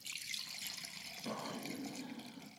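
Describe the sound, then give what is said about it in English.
A Manhattan cocktail pours steadily into a 6-ounce cocktail glass over cherries at the bottom for a couple of seconds, a continuous splashing trickle whose tone shifts partway through as the glass fills. No one speaks. “So I'm using 6-ounce cocktail glasses, and I just take the cherries, which I'm using for garnish, and drop them into the bottom of the glass and just pour the cocktail in on top.”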